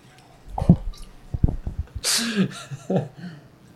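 A few soft knocks and clinks, then a short, hissy splash of water poured into a glass for about half a second, followed by a brief faint rustle. No one speaks.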